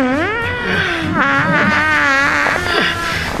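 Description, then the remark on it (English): A voice makes a long, loud imitation of Grandmaster Pycelle's fart in a court scene: a sustained buzzing raspberry that wobbles and sputters in pitch for several seconds without a break. “You know, and then Grandmaster Pycelle lets out a fart that lasts for like 30, 35 seconds.”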